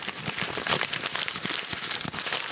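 A sheet of paper is crinkled and unfolded, producing a steady stream of dry, crackling rustles with sharp little snaps throughout, with no voices.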